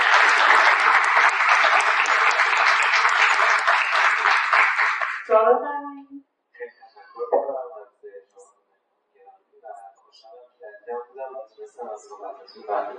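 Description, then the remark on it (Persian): A crowd at an event claps loudly and steadily for about five seconds, a dense wash of applause that stops abruptly, after which a single voice begins speaking in short bursts. “خیلی خیلی سپاسگزارم ازتون و میخوام که یه تشویق خیلی جانانه انجام بدید.”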